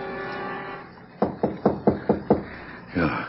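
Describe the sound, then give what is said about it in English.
Six quick, evenly spaced, crisp knocks on a door follow a low steady hum. A brief vocal sound comes right after the knocking. “Someone at the door.”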